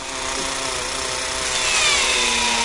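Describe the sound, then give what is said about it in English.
The Curiosity rover's drill grinds continuously into rock on Mars to collect samples, a steady dense whirring buzz with rising high-pitched tones, loud, with no pauses and no voices. “It's the first rover that can drill for samples of Mars and analyze them in its built-in lab.”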